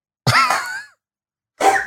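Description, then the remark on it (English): A man coughs twice, fairly loud: a longer, raspy, throaty cough followed a moment later by a shorter one, with no talking around them. “It is actually him coughing too.”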